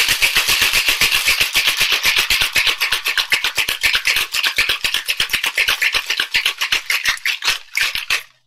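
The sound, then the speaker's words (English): Ice rattles hard inside a cocktail shaker, a loud, steady rhythm of sharp clattering strokes, several per second, lasting around eight seconds before stopping abruptly. No one speaks. “If you're using ice at home, you want to shake for about 7 seconds.”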